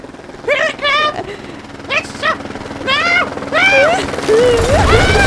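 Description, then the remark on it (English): A helicopter's rotors thump in a steady, rapid chop throughout, loud, while high, warbling vocal chirps rise and fall in bursts over the top. “I can have my helicopters fly.”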